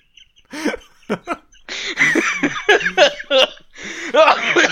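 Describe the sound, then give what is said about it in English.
Laughter breaks into a run of harsh, rapid coughs, several bursts close together, fairly loud, with no talking over it. “You set off my cough laugh.”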